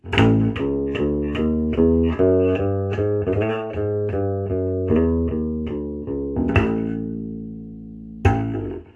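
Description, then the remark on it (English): A jazz bass guitar on its bridge pickup plays alone: a steady run of bright, punchy plucked notes, then a long ringing sustained note and one final firm pluck. “Let's hear the bridge pick up that stuff.”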